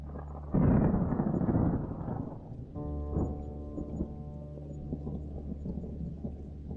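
A loud thunderclap breaks out and rolls into a long rumble, then settles into steady pouring rain with a low, sustained droning tone underneath, during a night thunderstorm with roaring wind and lightning. No voices.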